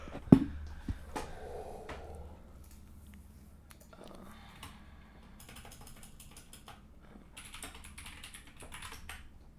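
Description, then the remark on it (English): Typing on a computer keyboard to look up a story: irregular runs of sharp key clicks, pausing briefly and then clattering on in quick bursts, with no one speaking. “You're close to the keyboard.”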